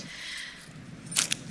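A quick jingle of keys: two short metallic shakes near the end, over a low, steady background hum with no talking.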